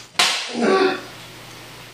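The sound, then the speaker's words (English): A single sharp whip crack snaps out loud as a person is whipped, followed by a short whooshing, slightly ringing tail that fades within a second. No voices are heard. “Please whip me more.”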